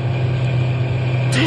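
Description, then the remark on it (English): A truck engine runs with a steady, low droning hum that holds at an even loudness throughout, unbroken, with a brief faint higher sound near the end. “Stop the truck.”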